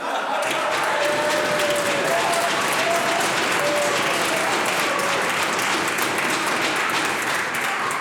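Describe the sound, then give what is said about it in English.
Sustained applause from members in a parliament chamber during a question-and-answer exchange with a minister, a dense, steady clatter of many hands clapping for about eight seconds with faint voices murmuring underneath. “I'm not quite sure, Mr. Speaker, why that would get applause.”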